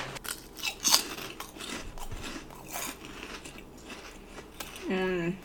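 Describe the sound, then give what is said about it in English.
Crunching and chewing of light, airy, crispy garlic-and-butter flavoured shrimp chips containing 13.5% shrimp, with a series of crisp, irregular bites, ending in a short hummed vocal sound. “They have this crunch, but then they also melt in your mouth.”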